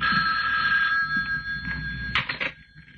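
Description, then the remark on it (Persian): A telephone in an apartment rings steadily with a bright, continuous trilling bell, fairly loud, then stops abruptly near the end with a clatter as a man hurries to it and picks up the receiver. “با عجله به طرف تلفن رفته آن را برمی‌دارد.”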